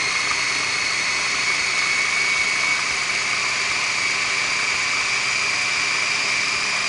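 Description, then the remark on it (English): A blender whirls frozen bananas in one loud, unbroken run, its motor holding a steady high whine over a dense grinding roar for the whole stretch, with no voices. “I'm gonna give this a little bit of a whirl. Now my bananas are frozen, so this is gonna set up.”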